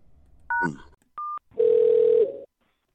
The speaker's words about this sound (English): Hello, your call is ringing.